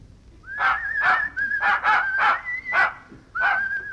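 dog barking and whimpering

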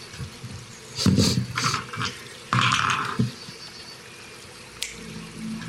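flowing stream water

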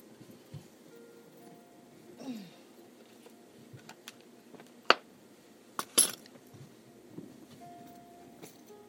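drinking glass clinking

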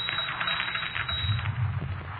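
typewriter typing by itself

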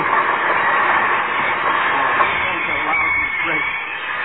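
train running on rails

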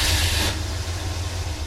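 truck engine idling

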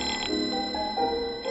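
telephone ringing

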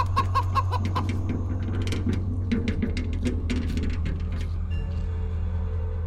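chicken clucking

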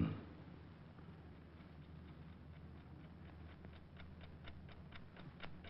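clock ticking

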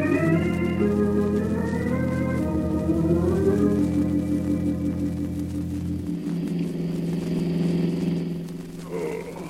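car driving

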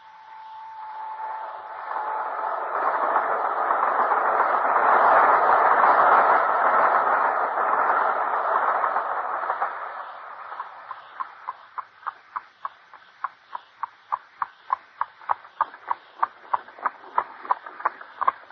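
train running on rails

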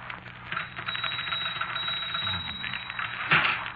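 typewriter typing by itself

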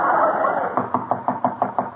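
knock on a door

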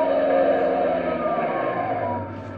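police car siren

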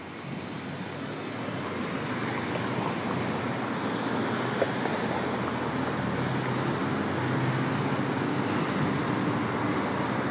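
passing cars

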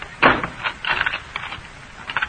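door being unlocked

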